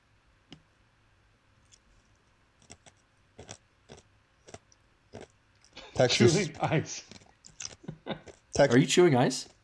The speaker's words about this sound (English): I was waiting for you to stop chewing ice.